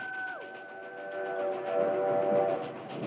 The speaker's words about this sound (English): I will say, Train! It's iconic.